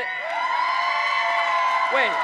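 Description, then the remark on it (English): A church audience cheers loudly and steadily for the senior pastor and his wife, with sustained whoops and shouts over a dense wash of noise that could be clapping, keeping the same high energy for the full couple of seconds. “Let me just compare the applause for Ed and then for Diane.”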